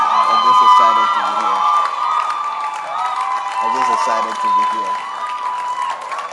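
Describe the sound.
A church audience claps and cheers loudly and steadily for a visiting bishop, a dense wash of applause with excited voices and whoops rising over it throughout.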